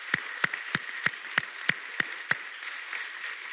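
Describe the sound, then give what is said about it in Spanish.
A church audience applauding to honor a man who serves the church: a steady rhythm of sharp claps, about three per second, rides over a continuous wash of crowd clapping, the rhythmic beats dropping away near the end. “Así que vamos a darle un fuerte aplauso en este momento, reconociendo el trabajo que está haciendo y lo que va a hacer y lo que ha hecho.”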